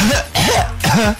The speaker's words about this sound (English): So Jack, I'm going to pretend to cough.